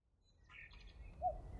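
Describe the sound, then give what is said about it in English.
A few short, faint bird chirps sound against a low outdoor rumble: a bright flurry of high tweets, then a couple of lower whistled notes near the end. No one speaks. “We've been watching birds all morning as they've hopped and eaten and kicked leaves and sat in trees.”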